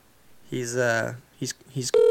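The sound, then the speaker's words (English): A voice sounds briefly, then a steady electronic telephone tone begins abruptly at the end, loud and even in pitch, like the start of dialing on a phone line, as a call is placed to an old man. “Let's call the old timer and get his hot take.”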